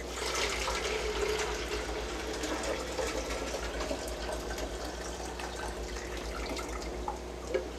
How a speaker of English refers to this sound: So what we're going to start with is an empty container. I always keep two extra containers for this process. So I'm going to take the collection cup that I showed you, the filter one. We're going to pour that right through.